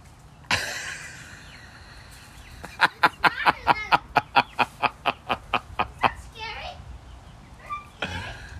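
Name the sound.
chicken clucking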